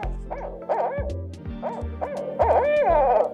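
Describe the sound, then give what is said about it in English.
An owl hoots in a quick run of rising-and-falling calls, loud, ending in a more excited burst, with a deep rumbling drone underneath. “And this is kind of a folktale, how the owl call came to be. Who cooks for you? Who cooks for y'all?”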